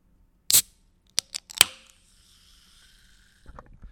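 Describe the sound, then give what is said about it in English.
A can of Bubbly sparkling lime water, taken from a studio fridge, cracks open with a sharp hiss, a few quick metallic clicks, then a soft lingering fizz, followed by faint rustling. “That's a bubbly lime.”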